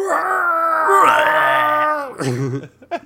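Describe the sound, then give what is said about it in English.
A voice imitates the long, drawn-out dying groan of a husband in a TV show, held steady and loud for about two seconds, then trailing into a wavering, faltering moan that ends in a couple of short gasps. “And just like a long drawn out.”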